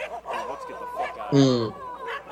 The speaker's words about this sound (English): In tales, it is posited that dogs will bark in the night to ward off evil spirits, which they, much like cats, are said to be able to detect.